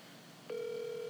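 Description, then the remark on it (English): A steady electronic ringback tone comes down a phone line, starting abruptly halfway through and holding at one even pitch over faint line hiss, with no voices. “I mean, but it's ringing, so it's pretty.”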